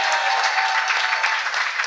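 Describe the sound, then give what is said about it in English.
A crowd applauds with dense, steady clapping that fills the whole moment, loud, with no voices rising above the sustained patter of many hands. “Round of applause. Come on.”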